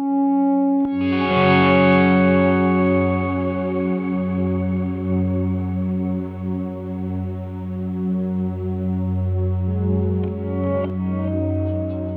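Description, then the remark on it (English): New wave progressive rock music by an early-1980s band from St. Louis: a loud, sustained wash of effects-laden, distorted tones with chorus and echo, steady chords droning under a sharp accent near the start and another late on. “Back in the early 1980s, when progressive rock was descending and new wave was ascending, a band came out of St. Louis who bridged that gap.”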